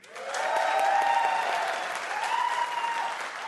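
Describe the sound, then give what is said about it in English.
Cubs fans in the audience answer a survey by applause, a dense wash of clapping that swells quickly, holds steady for a few seconds, then eases slightly while continuing, with faint cheering mixed in. “Who, by applause, considers themselves a Cubs fan?”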